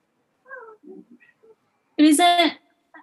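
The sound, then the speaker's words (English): One of several dogs gives a loud, high, drawn-out whine lasting about half a second, after a few faint short whimpers and yips, with a brief squeak at the end. “Sorry, the dogs are being loud.”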